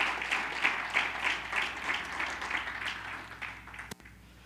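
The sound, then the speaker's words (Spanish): An audience applauds the Lord after a prayer, a dense, steady wash of many hands clapping at moderate volume that thins slightly before a brief click near the end, with no voices over it. “Si hiciste esta oración, dale un fuerte aplauso al Señor en el nombre de Jesús.”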